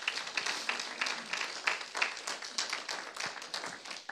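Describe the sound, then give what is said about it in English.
An audience claps together in a dense, steady stream of overlapping hand claps, moderately loud, without any talking, applauding college students for serving in a children's ministry in Charlotte. “We can give them a big clap for serving.”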